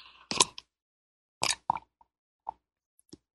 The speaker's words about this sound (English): I'm going to take a sip of my mate tea here. I managed to salvage some of it.